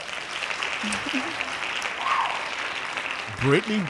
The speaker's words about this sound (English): Hold on before you get started. We have to give our co-host here a very strong hand claps.